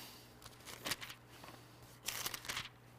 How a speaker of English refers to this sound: I still love to hear those pages turning.